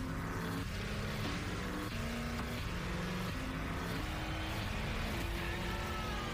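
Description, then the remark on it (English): A car engine revs loudly and steadily in a Marvel promo for Agents of S.H.I.E.L.D. featuring Ghost Rider, its pitch climbing and dropping back in repeated steps as if shifting through gears, with no voices over it. “Hey, it's a car.”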